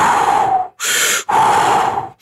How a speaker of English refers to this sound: No, when you come up out of a pool, you go, and you push all the CO2 out. Most people do it opposite. They breathe. You're actually wanting to breathe out.